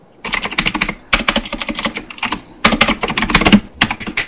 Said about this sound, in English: Someone's mechanic keyboard's hard at work.